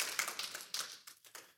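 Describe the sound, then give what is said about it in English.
An audience claps in a brief, scattered burst, the uneven sharp claps thinning out and stopping after little more than a second, with no one talking. “Some of y'all didn't clap.”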